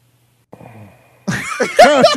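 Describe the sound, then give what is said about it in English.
A man burps after drinking from a can of Perrier: a short, low rumbling belch, then a louder, longer croaking burp with a wavering pitch. “He's burping.”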